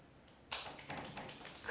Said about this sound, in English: Yes, that's worthy of applause.